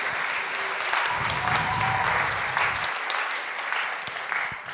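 Sustained audience applause fills the room, a dense, steady wash of many hands clapping at close range, holding level for several seconds before tapering slightly at the end.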